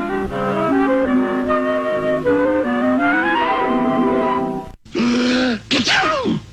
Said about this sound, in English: The peacock sneezed, blew all his feathers off. Oh, that's right. That was a famous variation of the 1960s era in living color animation from NBC.